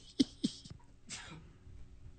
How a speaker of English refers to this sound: Excuse me. I think my crack cocaine cold medication is starting to wear off. I'm sneezing again. I'm sniffling again.